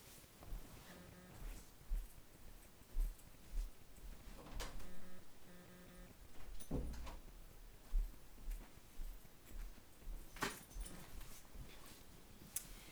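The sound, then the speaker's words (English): A door is opened to let a dog out: a few sharp clicks and clunks of a latch and handle, with scattered shuffling and rustling noises, no talking. “But I wanted to just, the main part of the lesson I'm going to get to in a second as soon as I open the door for the dog.”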